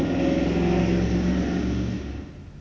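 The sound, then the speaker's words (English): A Harley Davidson motorcycle engine revs loudly, its throaty rumble holding steady before fading off as it passes and recedes. No one speaks. “That guy on the motorcycle, support him, support Harley Davidson.”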